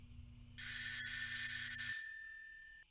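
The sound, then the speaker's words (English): A doorbell at the door of a doctor's house rings once in a steady, bright burst lasting just over a second, then cuts off and leaves a thin metallic tone fading away. It is loud, and no one speaks. “Where's the bell?”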